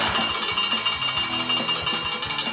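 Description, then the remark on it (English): A cowbell clanks in a fast, steady rhythm of sharp, bright metallic strikes, loud and continuous, with no voices. “I'm the one ringing the bell by myself?”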